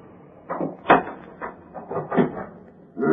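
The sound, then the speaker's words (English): A door being opened, with a short series of wooden clunks and rattles spread over a few seconds, fairly loud, with no voices. “You open door.”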